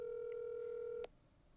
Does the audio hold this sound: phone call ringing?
yes